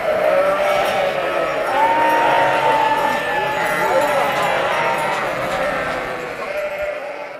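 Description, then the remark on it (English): A large flock of sheep bleats loudly and continuously while a mass of hooves clatters and scuffles as the sheep charge out through gates opened by herders at the start of a transhumance in Italy, the crowded din holding steady before easing slightly at the end. “And out charge the sheep, who know exactly what direction to head in.”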